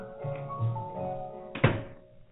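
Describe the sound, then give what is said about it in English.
A door is pushed shut with a single solid thud, cutting through a murmur of busy background noise that fades away afterward. “Will you wait till I shut the door, please?”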